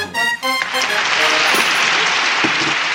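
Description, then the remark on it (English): A crowd breaks into steady, dense applause that fills nearly the whole three seconds at a loud, even level, following a brief burst of harmonic, voice-like tones at the very start. “They're applauding for me.”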